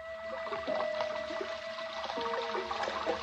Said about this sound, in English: That's the way it sounded when it rained, because the room was just below gutter level, and the rainwater rushed by the room's only window.